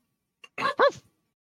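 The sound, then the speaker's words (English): A person vocally imitates a dog's bark, giving a short, muffled "boof" made of two quick bursts, with a faint breath just before and nothing else around it. “and you see it snarl one last time, and then give a bark and runs off. A bark. A boof. Boof.”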